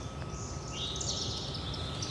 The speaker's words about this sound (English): Okay, I'm hearing the cicada again. I'm walking towards it. I think it's getting louder.